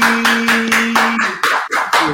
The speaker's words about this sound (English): So definitely want to welcome him to the show. Let's clap it up, baby.